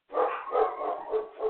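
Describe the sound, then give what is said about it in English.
Several dogs in an office bark in a quick run of about four sharp, yappy barks that blur together, moderately loud, with no one talking. “Sorry, I got a bunch of dogs in the office here.”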